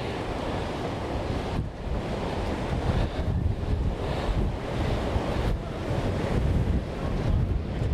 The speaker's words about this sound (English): Actually, this is brilliant. The sea is furious. A proper tempest.